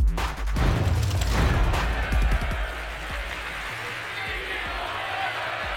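A huge Philadelphia basketball arena crowd chants loudly in unison at Portland's Damian Lillard at the free throw line in the first quarter of a Sixers–Blazers game, a rhythmic roar that stays dense and sustained for several seconds, with no single voice standing out.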